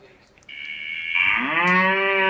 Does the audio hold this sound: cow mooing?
yes